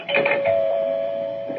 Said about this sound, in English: Oh, there's the doorbell, Laura. I better go answer it. Can't be Ed.